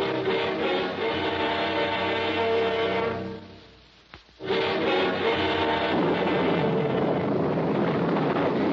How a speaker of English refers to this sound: Listen, we've got to go below. Below? And miss a storm like this?